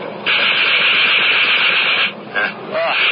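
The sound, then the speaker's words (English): A Morin fighter plane's machine guns fire in a long, harsh, rattling burst lasting about two seconds, then stop briefly before two shorter bursts follow, all with a hissy, crackling edge. “I'm going to try the guns. These are new to me.”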